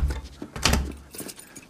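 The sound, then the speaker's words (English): A door is pushed shut with a dull, low thud and a brief metallic rattle of its latch, followed by fading rustling and creaks. “Close the door.”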